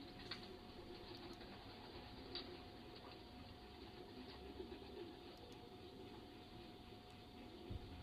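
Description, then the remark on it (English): Pigeons coo steadily in a low, murmuring drone, several birds overlapping, with occasional faint rustles and soft wing movements in the background. “So this bird, I don't know if it's male or female yet.”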